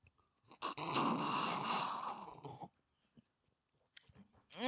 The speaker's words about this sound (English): Tonight we are sipping on Roquat the Red, the recipe for which you can find on our Instagram at Oz Hour Podcast. Let me slurp.